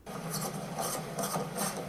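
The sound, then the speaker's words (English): Cranking of an old Army surplus field phone: a steady, raspy grinding whir that swells in about four rhythmic bursts over two seconds, fairly loud and with no voices. “No, but we have that old Army surplus field phone. Just crank it real good and touch him over his heart with the wires.”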